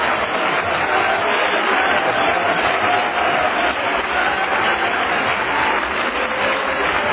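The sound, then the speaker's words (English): An audience at a church service claps and shouts together in a dense, continuous roar of applause and cheering that stays loud and steady for several seconds without a break. “Oh, clap your hands and shout unto it.”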